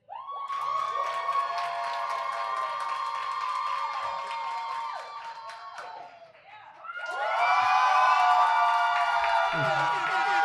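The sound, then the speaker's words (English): A live audience cheers and whoops loudly and continuously, many voices shrieking and yelling at once, dipping briefly before surging back even louder with scattered claps mixed in. “It's like the crowd has spoken. The people have spoken.”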